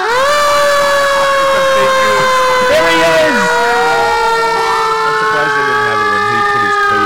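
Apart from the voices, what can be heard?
fire truck siren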